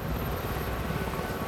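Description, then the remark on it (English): A steady, loud roar of a circling helicopter's kerosene-burning turbine engine with the rapid, throbbing chop of its spinning rotor blades as a man is winched up to it, dense low-frequency rumble filling the whole stretch without pause. “Don's bearded face, the rotating propellers, the roar of the engine.”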